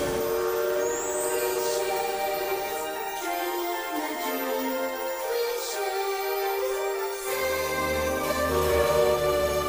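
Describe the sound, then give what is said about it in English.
A Disneyland Railroad train, the Disneyland Limited, pulls away along the tracks at Disneyland for a grand circle tour, its steady mechanical rumble and hissing filling the scene, with faint whistle-like tones drifting above. No one speaks. “The Disneyland Limited now leaving for a grand circle tour of the Magic Kingdom.”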